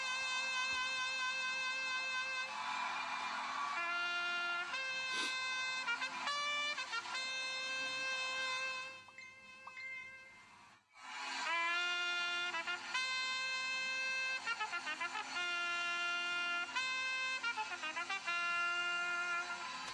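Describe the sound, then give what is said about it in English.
Loud, bright trumpet blasts: a series of sustained, brassy notes shifting in pitch, with a brief break partway through before the blaring resumes. No one speaks. “So when you hear the sound of my trumpet, I want you to clap your hands and release a shout of triumph.”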